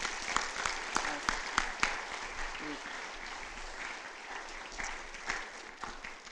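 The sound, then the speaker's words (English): A church audience bursts into sustained applause for four staff members, a dense wash of clapping with a few sharper claps standing out early on, holding steady for several seconds before easing slightly. “But could you give a round of applause for these four, and then by extension, everybody else?”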